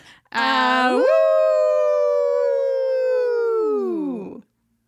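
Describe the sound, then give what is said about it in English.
A voice imitates a wolf's howl: one long, loud cry that slides upward, holds steady for several seconds, then drops away at the end, with no other sounds around it. “Maybe let's kind just of. Be wolves.”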